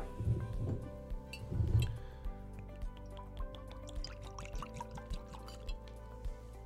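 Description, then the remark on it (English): Jefferson's Reserve Very Old Kentucky straight bourbon whiskey from a very small batch glugs into a glass, with two heavier low splashing bursts early on, then a lighter trickle and small drips tapering off with faint clinks. “I always love the sound of that pouring in.”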